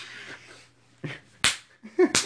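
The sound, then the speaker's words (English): Several sharp smacks of a fist punching a man's body land at irregular intervals, each a quick slap-like thud with a brief rustle between hits and no talking. “you punching him?”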